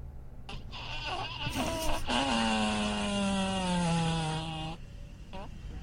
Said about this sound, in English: That's just somebody farting. Somebody farting. Is that your final answer? Do I have to get specific, like a guy, a girl, or just somebody farting? It is a person farting. Person farting.